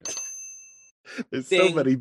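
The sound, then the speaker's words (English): A single bright bell dings and rings out for under a second, its clear tone fading before a voice starts talking. “There's so many bells.”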